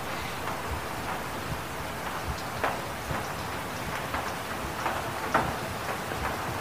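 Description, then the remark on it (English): Steady rain falls and splashes on a roof and the ground, a dense patter of drops with occasional sharper taps and clatters standing out from the constant wash. No voices. “Even the rain says, okay, I'll show you how to do it. Just watch me be rain. Watch the way I splash and clatter on the roof, make the ground wet.”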